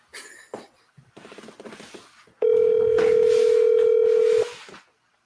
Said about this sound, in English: Let me see if I can get somebody to answer the phone here. Somebody from Lee Valley.